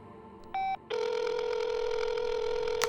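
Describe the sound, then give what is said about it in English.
A telephone rings for an incoming call: a short electronic beep, then a loud, steady warbling ring tone that keeps going, with no voices. “Why are you calling me, Sinus? What if he's tapped our phones?”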